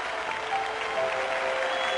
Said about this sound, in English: Full house. Mm-hmm. People immediately start clapping. It's so beautiful. Everybody was standing and applauding.